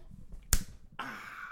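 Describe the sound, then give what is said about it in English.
A single sharp punch sound effect lands with a crisp, cracking impact, followed after a short pause by a sustained hissing rush that carries to the end. “If you're going to do it, I want a punch.”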